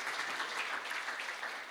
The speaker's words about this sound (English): Yeah, come on, let's give them a round of applause. It's so good.